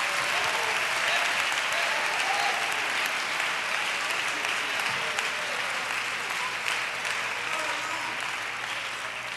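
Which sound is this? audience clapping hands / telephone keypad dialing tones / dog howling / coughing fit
audience clapping hands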